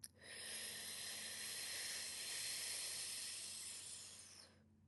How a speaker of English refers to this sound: You're going to inhale through your mouth and exhale through your mouth, but through that sipping straw breath. So inhale.